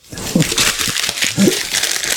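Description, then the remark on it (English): Paper crinkling and rustling as it is handled, a continuous crisp crackle with a few louder scrunches, and a faint voice murmuring briefly underneath. “There's a paper. I got to read the cue cards.”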